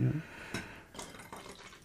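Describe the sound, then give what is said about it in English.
Beer that has gone bad is poured out, a short run of splashing, trickling liquid with uneven little bursts, fairly quiet and lasting under two seconds. “Here, just pour this out.”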